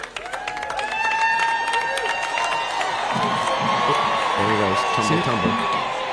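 An audience claps steadily throughout as the president falls on stage, a dense, continuous patter of hands mixed with crowd voices and scattered cheers and whoops, loud and sustained without a break.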